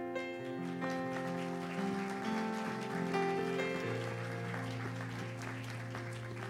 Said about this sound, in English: Let's give another hand clap of praise to the Lord this morning.